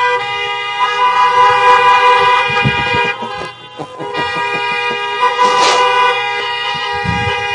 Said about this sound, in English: If you're happy that Jesus rose from the tomb today, honk your horn.